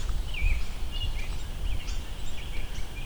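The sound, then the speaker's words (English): A European starling sings a run of thin, varied whistles and squeaky warbles, rising and falling in short bursts over a steady low rumble, with no voices. “It's an American robin singing, there's a European starling singing.”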